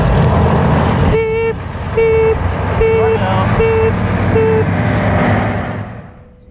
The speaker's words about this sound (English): when they repossess your stuff, they don't come back the next day in a truck and dump it on the floor.